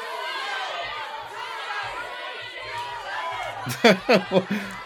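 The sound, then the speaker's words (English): A game show crowd boos in a steady, dense wash of voices, then several loud, sharp vocal outbursts rise above it near the end. “It's my booing game show crowd.”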